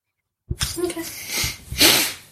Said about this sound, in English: No more sniffles.